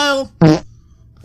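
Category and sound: sound effect, fart noise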